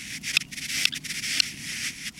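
Three sharp, high clicks from a male buff-breasted sandpiper courting a female on its breeding ground in the far north of the Arctic Circle, raising its wings, spaced about half a second apart over a steady, rushing hiss, with no voices.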